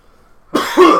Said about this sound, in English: So that was my cough. My natural cough.